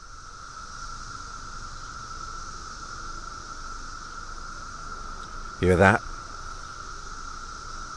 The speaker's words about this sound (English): Periodical cicadas. The 17-year hatching of Brood X. They're reaching their climax now up in the trees. It's quite magical, really.